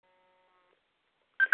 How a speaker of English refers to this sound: I can't turn my alarm off. Hold it a second.